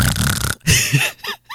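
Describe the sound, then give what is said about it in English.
A voice imitates a man snoring, showing a pharmacist what her husband does, with a rough, rattling inhale followed by a few shorter snorting grunts, fairly loud, over about a second and a half. “Her husband snores.”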